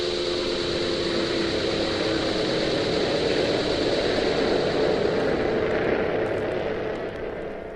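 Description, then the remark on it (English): A loud, steady roar of a starliner's powerful quad ion engines with layered humming tones, droning continuously as the craft lifts into the atmosphere and prepares for space warp, then easing slightly in the final moments. No voices. “The Starliner Galaxy 1, brought to life by the powerful quad ion engines, lifts into the atmosphere and prepares for space warp.”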